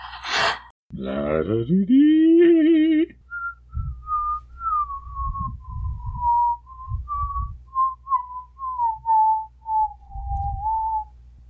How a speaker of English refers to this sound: I can whistle that, right?